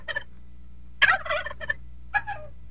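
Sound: turkey gobbling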